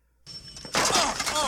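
A man runs into another man carrying a coffee tray, knocking the tray to the floor. A brief quieter rustle leads into a loud, bright burst of clattering and shattering with ringing pieces.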